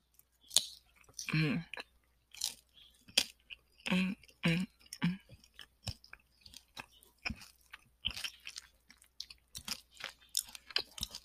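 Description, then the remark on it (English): Loud crunching as someone bites and chews a crunchy taco drizzled with lemon, with irregular bursts of crackly, wet mouth noise over about eleven seconds and no talking. “Let me eat this while I'm thinking.”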